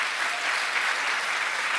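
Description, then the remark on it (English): Steady applause from an audience for San Francisco Supervisor John Avalos, a dense crackle of many hands clapping at an even loudness throughout, with no voices over it. “So a round of applause for San Francisco Supervisor John Avalos.”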